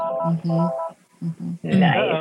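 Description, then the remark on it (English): Short electronic telephone tones sound in a few quick pulses as a phone call connects, then give way to a rush of louder, noisy sound at the end. “Oh, somebody answered. Got a phone call.”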